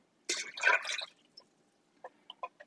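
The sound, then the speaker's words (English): The contents of a 15-ounce can, about 2 cups, glop and splash into a pot of water in one short, wet burst, followed by a few faint drips and small plops. No talking. “Because this 15-ounce can, of course, is like 2 cups. So we just chunked him in there.”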